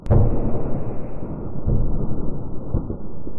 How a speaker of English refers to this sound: There's the sound of explosions in the distance.